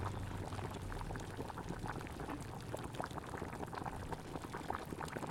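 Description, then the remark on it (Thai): Water boils and bubbles steadily in a pot while tom yum soup broth with its herbs is being added, a continuous dense crackle of small pops and gurgles, fairly loud and even throughout with no talking. “ตอนนี้เสียงน้ำเดือดปุดแล้วค่ะแล้วเรากำลังใส่น้ำซุปกันอยู่”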